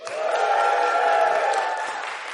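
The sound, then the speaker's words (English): A steady round of applause from a crowd, dense and continuous throughout, with a murmur of voices mixed in and a slight fade toward the end. “I'm sure that round of applause was for them.”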